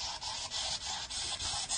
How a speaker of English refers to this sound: This ghost box has a beat I can get down to. I shouldn't talk over it in case I actually get something.